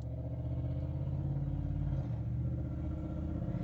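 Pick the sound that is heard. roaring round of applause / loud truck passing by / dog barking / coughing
loud truck passing by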